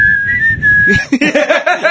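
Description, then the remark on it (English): Someone whistles a short, clear rock song melody line for about a second, then the whistling gives way to a voice talking. “What's the one with the whistling?”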